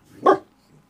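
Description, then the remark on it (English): A single sharp, loud dog bark with a quick burst of harmonic energy that cuts off fast, leaving quiet behind it. “I wish this was the wind-up toy that would run out of barks, but it does not.”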